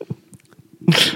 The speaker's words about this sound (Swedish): En nysning kostar 200 spänn.